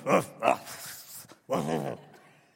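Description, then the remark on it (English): A person's voice imitates a dog barking: two quick, sharp woofs, then a longer, drawn-out bark-like cry that trails off. It is fairly loud and has no other talk. “No matter how much you try to teach that dog to talk, he's a dog and he's going to bark.”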